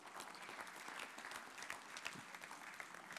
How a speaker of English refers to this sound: Give her a hand clap for that.